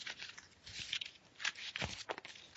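Soft, irregular rustling and crinkling of paper being shuffled and handled, with a few sharper crackly bursts. It is fairly quiet and there is no talking.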